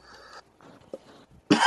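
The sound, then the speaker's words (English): A single loud, harsh cough bursts out near the end, after a stretch of faint breathy rustling and low murmurs. “I'm going to stay on mute. Hopefully when I cough.”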